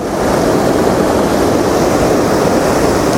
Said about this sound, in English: So yeah, this little waterfall is very nice and very green.